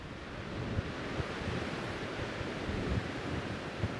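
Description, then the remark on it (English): Ocean surf roars steadily across the whole clip at the exposed start of the Te Araroa (Long Pathway) trail, a dense unbroken wash of noise with low rumbling surges rising now and then. No voices are heard. “Te Araroa, or Long Pathway, dispenses with formalities, taking any hiker who dares onto an exposed start of drenching squalls, inconvenient tides, and a never-ending roar of sound that begins as a curious lullaby, but in time, crescendos to a scream.”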